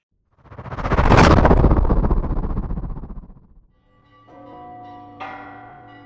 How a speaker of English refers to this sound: The bells of the great churches of Rome rung out in alarm as citizens darted around the city frantically.